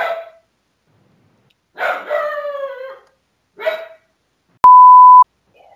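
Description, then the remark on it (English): A dog barks in separate loud bursts, one stretched into a drawn-out, falling howl-like yelp, followed by a short steady electronic beep and a faint final yip. “The instant I stop petting you, you're going to start barking again.”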